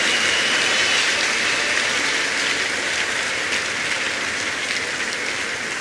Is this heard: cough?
no